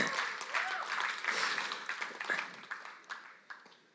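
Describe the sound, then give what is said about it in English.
A short burst of crowd applause, many hands clapping in a dense, crackling wash that swells and then gradually thins out toward the end. “Why don't we give them a quick round of applause?”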